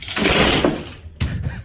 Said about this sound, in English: Oh, that cracking. Jack sliding across the floor. Right? Oh, my God. It's so loud.